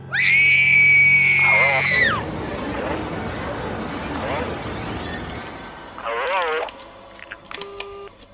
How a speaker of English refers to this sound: And it was on that word, Al, that a bone-chilling scream ripped through the house, and it came from the bedroom.